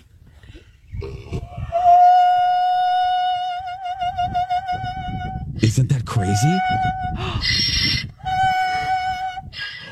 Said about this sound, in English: No, that's a singing donkey.